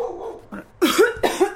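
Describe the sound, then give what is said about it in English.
Two loud, harsh coughing bursts about half a second apart, following a quiet, muffled stretch, with no talking in between. “Excuse me. Bless you.”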